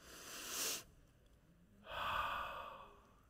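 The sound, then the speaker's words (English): Deep, airy breathing: a short inhale followed by a brief pause, then a longer, fuller exhale. The breaths are soft and unhurried, with no talking. “And then I started doing Jewish history, and I read where this was kind of a common knowledge among Hebrew people or rabbis, that Yahweh, which to them is very sacred and holy, is the sound of breath, the sound of breathing.”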